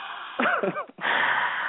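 Loud, close breathing blown straight into a microphone, a rough wheezy rush of air that briefly turns voiced and whiny before a steady hiss of exhaled breath.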